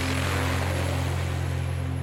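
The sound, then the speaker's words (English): A steady, droning whir of helicopter rotors and engines at the presidential palace in the Philippines, the helicopters taking the Marcos family out of the palace, with strong low tonal hum and a rapid rhythmic chop, continuous and fairly loud throughout, no voices. “And I remember, I don't know if I'm imagining it, but I remember hearing the whir of helicopters.”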